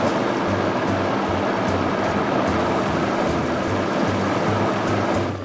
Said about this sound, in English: So now that we have all of our ingredients in the blender, we can just put the lid on and blend this. As our soup is blending, it's likely that it's going to become a little more thick, so should we need to add a little more water, certainly can.